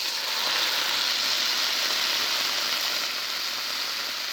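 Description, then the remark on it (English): A loud, steady sizzle and hiss as a little water is added to a hot frying pan of Brussels sprouts greens with onions and garlic, holding evenly for several seconds with a bright crackling texture and no speech. “Just a little bit of water.”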